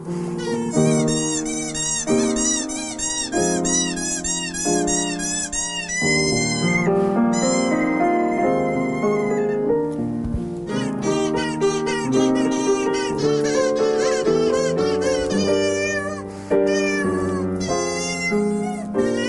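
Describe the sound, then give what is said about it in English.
A melody played on sound artist Henry Dagg's cat organ, a row of squeaky fluffy cat toys squeezed in turn, each note a high, meow-like squeal, tumbling along in quick, overlapping runs for the whole stretch with no talking. “It's a row of fluffy cat toys that squeak when they're squeezed.”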